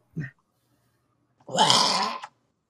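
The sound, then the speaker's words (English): A person imitates a bear's roar: a short throaty sound, a pause, then one loud, gravelly, sustained growl lasting under a second. “Like to first terrify and then begin the slaughter. Give me a nice roar.”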